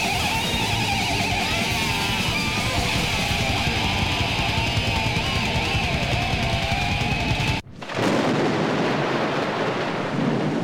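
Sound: rain and thunder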